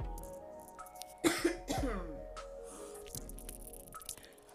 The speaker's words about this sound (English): Man, it's one of the moments that I feel like I'm about to cough.